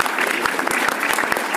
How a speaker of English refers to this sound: Thank you very much for your question. Round of applause. Yay.